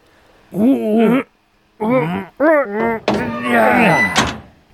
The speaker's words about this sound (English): Well, here's those iron doors I was telling you about. Y'all help me get them open.